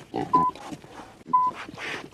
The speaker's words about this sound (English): And there's the pig. Te kuni kuni nutu whero a pōnake. The Wellingtonian red-lipped pig.